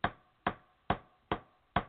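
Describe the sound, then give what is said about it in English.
Five sharp hammer strikes on a nail set in wood, evenly spaced about half a second apart, each a crisp knock with a quick decay and no talking. “So now use the nail set.”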